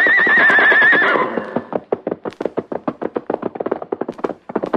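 A loud horse whinny from a white horse, with a wavering, shrill pitch, followed by a fast, steady drumming of hooves galloping for several seconds.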